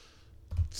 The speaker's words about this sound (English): I typed it before you said it, and you could hear it on the recording. Tap tap.